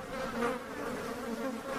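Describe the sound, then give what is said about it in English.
A continuous buzzing of horse flies droning steadily throughout, with a wavering hum and slight swells in loudness, no voices present. “Dadgummed horse flies come from. They're biting.”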